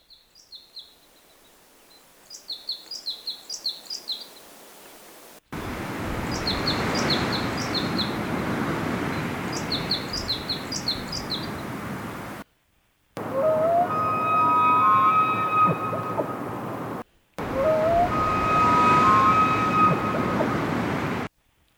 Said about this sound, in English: let's just play a clip from a Colorado forest. I think it's both, we're going to be listening to a red crossbill or several and some elk, and we can talk about that.